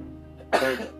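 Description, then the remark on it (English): A single loud sneeze bursts out suddenly after a brief quiet moment, a sharp breathy explosion that trails off quickly, with no talking around it. “I got to sneeze. Hold up.”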